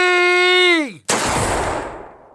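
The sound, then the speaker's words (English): A steady, buzzing tone holds for a moment, then slides downward in pitch and cuts off, followed by one loud gunshot whose crack fades out over about a second. “His gun fired once.”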